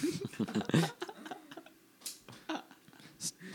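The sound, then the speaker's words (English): Sharp metallic clicks from a knife being flicked open, repeated at an uneven rhythm, following a brief stretch of someone talking at the start. “Stop flicking your knife out.”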